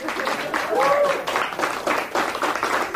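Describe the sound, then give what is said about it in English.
A crowd applauds steadily for a few seconds: dense, continuous clapping at moderate volume, with scattered cheering voices and a brief whistle-like tone rising early on. “Jorge Garcia, we all applaud you for tonight's episode, everybody”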